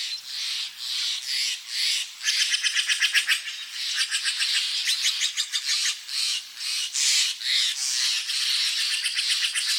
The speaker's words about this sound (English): We leave you this week just north of San Francisco, along the banks of the Russian River. Ed Herman collected these calls of birds and other creatures that echo each morning through the valley.